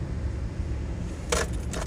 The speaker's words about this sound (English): Shut the engine off and sat there for a second.